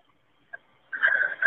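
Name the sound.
heavy breathing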